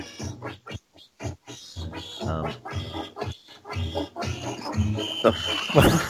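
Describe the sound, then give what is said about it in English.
A cartoon duck-style quacking song, meant to be a Donald Duck quacking song: a rapid run of raspy, nasal squawks in a choppy rhythm, growing denser and louder toward a harsh, noisy burst at the end. “Oh, it was meant to be a fucking Donald Duck quacking song, but obviously it wasn't loud enough.”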